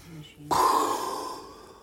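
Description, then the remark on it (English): A single deep, forceful exhale, bursting in abruptly and slowly trailing off over about a second, after a brief low vocal murmur. “All I know is that they measure your breathing and stuff like that, I think.”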